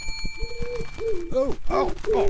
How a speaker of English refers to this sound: Now, be a pigeon.